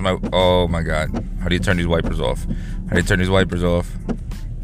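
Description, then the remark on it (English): A person talks inside a Mini Cooper car while driving to work, the voice boxy and enclosed, with a steady low rumble from the running car underneath throughout. “You can tell when I'm inside of the Mini Cooper and when”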